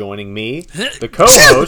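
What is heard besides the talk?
sneeze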